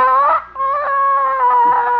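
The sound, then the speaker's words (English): A hen, as someone reaches under her for an egg, gives a loud, drawn-out, high-pitched call, a brief whine, a short break, then a long steady moaning note that wavers near the end. No one talks. “But by George, no hen can intimidate me.”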